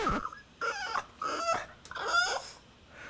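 A dog whimpers in a run of short, high-pitched whining cries, about four or five in quick succession, moderately loud with no talking.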